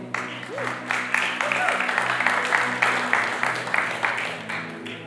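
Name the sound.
audience applauding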